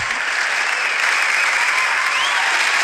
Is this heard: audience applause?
yes